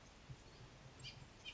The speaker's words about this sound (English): Can you hear the birds? Hear the birds up there?